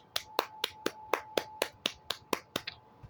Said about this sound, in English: let's do our clap for this.